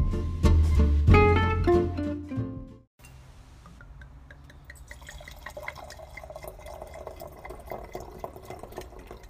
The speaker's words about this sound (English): The two loveliest sounds in the world are the sounds of a cork popping and the sound of a wine bottle pouring.